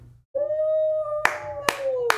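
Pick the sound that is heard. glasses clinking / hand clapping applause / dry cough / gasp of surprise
hand clapping applause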